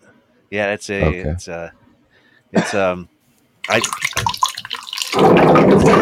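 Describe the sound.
A plastic water cooler jug gurgles and bubbles as water is drawn and bubbles rise back up into the jug, breaking into a steady rushing pour. It is fairly loud and follows a few brief voiced sounds.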